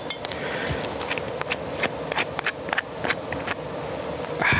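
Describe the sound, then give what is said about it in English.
A just-opened glass bottle of Jägermeister clinks repeatedly, a series of sharp, bright taps in an uneven rhythm over a steady low background hiss, with no voices. “A little clink, clink.”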